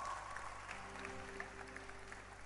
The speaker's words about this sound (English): No, I'm an usher. An usher. Clap your hands for the usher.